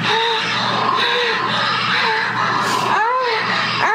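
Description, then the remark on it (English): A recording of loud, continuous screaming and wailing moans from a voice during sex, rising and falling in repeated cries that fill the whole recording without any speech. “This is Scream Sex here.”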